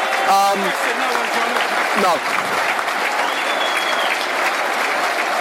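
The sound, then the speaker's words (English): A stadium crowd applauds the Millwall players off the pitch after a 5-4 penalty shootout loss to Brighton, a dense, even wash of clapping that fills the whole stretch, with a brief spoken word and a short shout rising over it early on. “Crowd rightly applaud the players off the pitch.”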